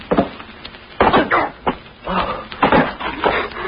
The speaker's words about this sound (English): What happened? We fell through a hole in the floor. It was covered with hay.